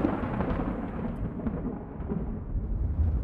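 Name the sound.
thunder rumbling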